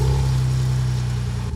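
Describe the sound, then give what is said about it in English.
A Ford Bronco Gen 6 engine roars loud through its new exhaust, holding a deep, steady revving drone before abruptly dropping off near the end. No one speaks. “That's my Gen 6. That's the new exhaust on my Gen 6.”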